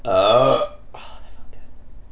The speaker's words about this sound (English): I don't know why I drink these, acting like I'm not gonna burp.